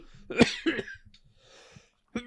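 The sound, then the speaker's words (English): Two harsh coughs in quick succession, followed by a rough, breathy exhale and a short vocal sound at the end. “Apologize for the cough.”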